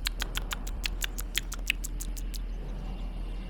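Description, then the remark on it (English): A rat nibbles at the wrapping paper of a large human-sized present in a quick, steady series of about a dozen small crisp scratchy bites, then stops, leaving only a low, constant hum. No one speaks. “Rat, nibble through the wrapping paper.”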